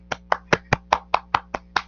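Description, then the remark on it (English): A single person claps for Will Smith, nine sharp, crisp hand claps in an even rhythm about five per second, with no voices. “Let's clap.”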